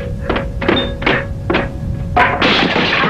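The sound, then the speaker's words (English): A series of four evenly spaced thuds as A man leaps around a room impersonating a monkey, ending in a loud, sprawling crash as he loses his footing and hits the floor, with a brief clatter afterward. No one speaks. “… leaps around the room doing an amazing impersonation of a monkey until he loses his footing and crashes to the floor.”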